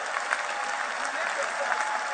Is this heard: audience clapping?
yes